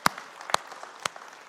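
Applause from a group, with three sharp, loud claps about half a second apart standing out over a faint, scattered patter of other hands clapping.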